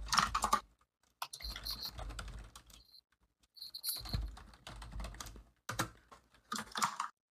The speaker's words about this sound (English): Excuse my keyboard. It's loud as fuck.